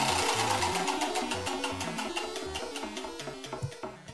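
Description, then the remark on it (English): Rapid, steady ticking of a spinning prize wheel, the clicks spacing out slightly toward the end, layered over a bright, stepping musical jingle. No one speaks. “Let's go ahead and spin the wheel.”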